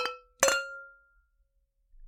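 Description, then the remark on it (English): Two bright glass clinks in a toast a moment apart, the second louder, each ringing briefly before fading into silence. Clear, with no voices. “I guess on that note, let's cheers, and let's see what we're getting into. All right, cheers. Cheers.”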